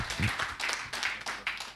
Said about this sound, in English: So we are blessed tonight to have with us Bishop Dr. Gregory Fuller. Let us put our hands together as we receive the man of God.